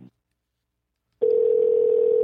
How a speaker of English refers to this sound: Is he afraid to answer the phone?